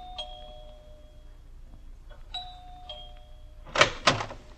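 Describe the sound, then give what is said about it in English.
A house doorbell chimes twice, each ring a sustained ringing tone with a bright overtone, followed by two sharp, loud thumps. No one speaks. “But there was only one doorbell, so I knew just what to do.”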